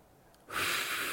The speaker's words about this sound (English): Just breathe on me.